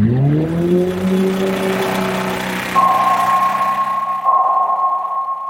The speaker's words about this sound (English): The one that we think about a lot with the species I study are the sounds generated from commercial shipping.